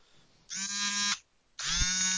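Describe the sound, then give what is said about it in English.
A mobile phone vibrating with an incoming call: two steady, rattling buzz bursts, each a little over half a second long, with a short gap between them and no talking. “It sounds like someone's phone's going off.”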